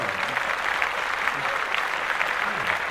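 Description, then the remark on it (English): Steady applause from a group of people celebrating a sister getting her learner's permit, a dense wash of overlapping claps lasting a few seconds at an even, moderate loudness, with faint voices murmuring underneath. “Let's clap.”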